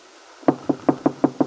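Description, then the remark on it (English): Six soft knocks on a wooden door in a quick, even rhythm, fairly quiet, with no voices. “There is a gentle knock at the door.”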